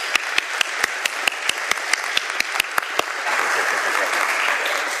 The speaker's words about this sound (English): Please give her a round of applause, thanking her for coming here to New Church Live.